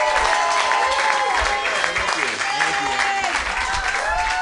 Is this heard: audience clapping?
yes